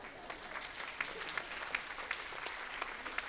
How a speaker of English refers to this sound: I think that's worthy of applause, don't you?